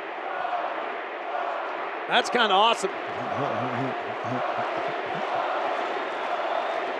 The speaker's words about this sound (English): What a ball game. That was a great game. Crowd still chanting Bogey.